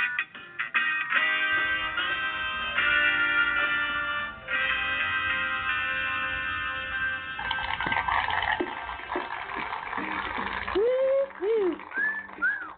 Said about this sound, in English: People in the back that are whistling. Keep it going. Whistling for Weedsday.